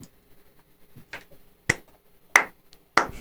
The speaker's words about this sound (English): The slow clap.